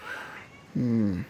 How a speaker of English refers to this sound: You hear my cat? He's going crazy at the door. He wanted to leave the room. Now he wants to come back in the room.